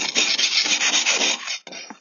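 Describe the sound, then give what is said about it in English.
A continuous, harsh scraping rasp of an ice scraper dragged repeatedly across an icy car windscreen, loud and steady with slight rhythmic surges, then a brief pause and a couple of shorter scrapes. “This scraper feels like it's putting ice on.”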